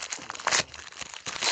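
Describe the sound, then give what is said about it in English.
Protective paper crinkles and rustles as a short whiskey glass is unwrapped, with irregular crackling bursts, the loudest at the start and again near the end. No voices are heard. “All right, so it is wrapped in the paper protective wrapping, so I'm assuming it is a glass.”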